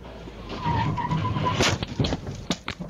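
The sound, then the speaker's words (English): Dashcam audio of a four-vehicle chain reaction crash at the Massey Tunnel: tires skid with a sustained high squeal, then sharp loud impacts and crunching bursts follow in quick succession as a car hits the median, flips onto its roof and slams into another vehicle; harsh, with no one speaking. “Yikes, the dashcam video capturing the end of a chain reaction crash involving four vehicles.”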